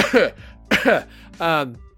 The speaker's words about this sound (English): I was just got a coughing fit there.